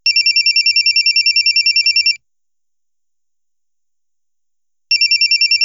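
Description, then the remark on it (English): A telephone in a home rings loudly with a fast, trilling electronic warble: one long ring, a pause of silence, then the next ring begins. “He runs inside, quickly changes his clothes, and is about to head out when the phone rings.”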